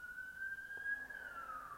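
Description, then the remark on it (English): A siren wails faintly in the background, its steady tone slowly rising and then falling away, with no one speaking over it. “Right now, guys, in the background, you hear sirens going.”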